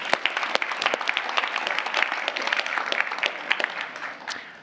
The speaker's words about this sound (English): Can we just give God a round of applause for that?